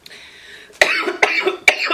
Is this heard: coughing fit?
yes